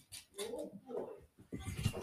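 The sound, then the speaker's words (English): A puppy named Milo whines at a door in a few thin, wavering cries, fairly quiet, followed by a short burst of soft scuffling or scratching. “Can you hear crying? Yes. Milo was for sure at the door.”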